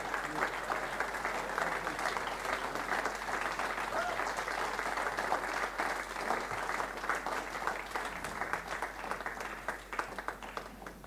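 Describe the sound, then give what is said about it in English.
Sustained applause from a large crowd at a religious morning gathering, welcoming guest presenters as people stand, dense steady clapping for the whole stretch, loud and continuous, with a faint murmur of voices underneath before it begins to taper at the end. “Let's give them a massive welcome.”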